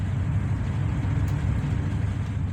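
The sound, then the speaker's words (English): A steady, loud low rumble of the Ha'emek passenger train moving away from Haifa, heard from inside while riding on 24 May 2021, a continuous droning roar with no voices and no breaks. “This is a recording I made while sitting on the Ha'emek train on the 24th of May, 2021.”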